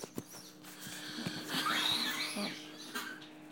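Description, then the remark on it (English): A single sneeze, fairly quiet and breathy, with a brief rising squeaky inhale leading into a short burst of air, and no talking. “Gesundheit.”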